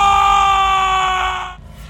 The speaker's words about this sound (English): A scream. But not a woman's scream. It was a man's scream. A visceral, vocal cord-tearing yowl from the depths of a man's throat. It was long and strained until it painfully tapered off.